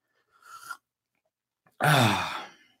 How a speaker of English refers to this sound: Now, because I want you to stay here with me in chat, I want to take a swig of coffee real quick. This is what you don't see in my videos, is the frequent sips of coffee.